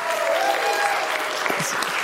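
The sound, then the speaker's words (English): An audience at Rooftop Church claps its hands, answering a call to give Jesus a hand clap, in a dense, steady burst of applause that holds at an even loudness throughout, with a faint murmur of voices underneath. “If you love Jesus, give him a hand clap.”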